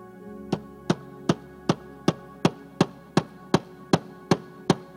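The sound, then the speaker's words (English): A hammer drives a nail into a door with about a dozen strikes in a steady, even rhythm, each sharp blow ringing briefly. The blows are clear, with no talking. “Because then, the one who paid the debt and made the way would take a nail.”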